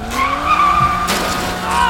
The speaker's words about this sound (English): We can't outrun them, but we can outturn them. If we try the handbrake slide again.